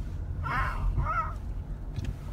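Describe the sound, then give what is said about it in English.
Two harsh crow caws in quick succession, heard from a car outside an Italian restaurant, over a steady low rumble like traffic or an idling engine. “Oh, the crows, you hear them? Yeah, that's my boys.”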